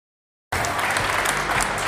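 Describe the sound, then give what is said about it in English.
Stock exchange closing bells ring on the TV show Overtime beneath a burst of loud, steady applause that starts abruptly after a brief silence and carries on evenly to the end. “You just heard the bells.”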